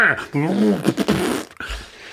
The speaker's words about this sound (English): Fart sound. Should we add a bunch of fart sounds to this entry, like we're like we're morning zoo DJs?